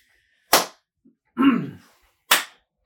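A sharp, bright hand clap rings out, followed by a short murmured voice, then a second identical clap about two seconds after the first, with silence around them.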